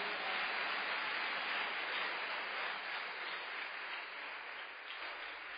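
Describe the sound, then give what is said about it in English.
An audience at a conference applauds first-time attendees, a dense wash of many hands clapping at once that holds fairly loud and even throughout, easing only slightly toward the end, with no voices. “Clap your hands for our new brothers.”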